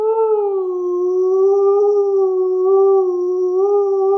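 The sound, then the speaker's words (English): A person voices a long, steady whale call, a loud sustained moaning tone that wavers gently in pitch and holds for about four seconds with no pauses or talking. “That's my whale sound, okay?”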